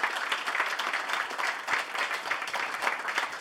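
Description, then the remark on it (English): A comedy show audience at an International Comedy Festival applauds itself for coming out, many hands clapping in a dense, continuous patter at an even, fairly loud level throughout, with no voices standing out. “And give yourselves a round of applause for coming out, supporting our show.”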